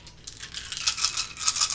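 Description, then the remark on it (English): A dense, bright clatter of many dice tumbling and knocking together, a continuous rattling that swells a little toward the end, with no voices over it. “So many dice.”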